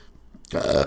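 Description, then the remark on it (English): A single loud burp erupts after a brief quiet moment, lasting about half a second with a rough, throaty rumble. “I'm burping like a fuckface.”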